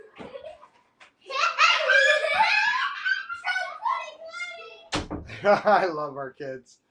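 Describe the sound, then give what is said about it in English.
A door is shut with a single sharp thud partway through as kids come in, amid lively, excited voices and laughter, including a child's voice, that continue after the bang. “Hey, can you shut the door, please?”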